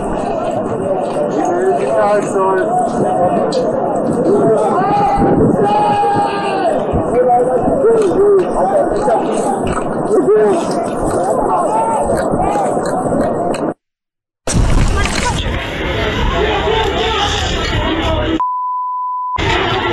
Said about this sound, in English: I see a large crowd over here smashing the SUVs. I think.